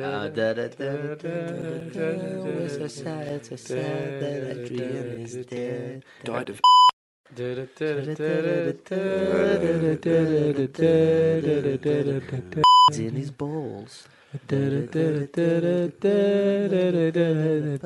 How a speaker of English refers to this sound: Maybe just beep those out